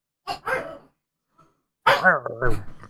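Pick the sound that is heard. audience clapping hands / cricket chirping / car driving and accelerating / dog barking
dog barking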